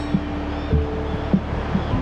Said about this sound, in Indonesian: Ada banyak sekali pemandangan selain pantai yang indah, dengan deburan ombak yang mengayun-ayunkan bubblemu. Seketika menggoncang lembut tubuhmu.